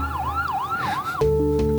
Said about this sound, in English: And I just left that in there because there are sirens outside of his interview, and he said they're coming to get him because he's a genius.